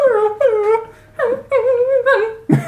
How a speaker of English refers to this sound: How do you know dogs don't cry? Anyway. Like okay. When dogs cry.